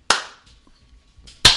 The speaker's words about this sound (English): You can't see this, but we're all high-fiving right now.